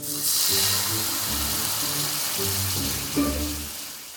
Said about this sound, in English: While the shallots were frying in the wine